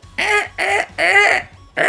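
A recorded harsh, raspy hawk or raptor call played at a quiet game repeats four times in quick succession, each cry loud, with short gaps between them and no voices.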